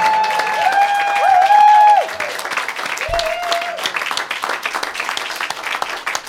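A crowd applauds steadily, with dense clapping throughout. Loud cheering and whoops rise over it in the first couple of seconds, and a single whoop comes around the middle.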